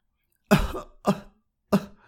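Someone coughs up water in three harsh bursts, each spaced about half a second apart, with no talking around them.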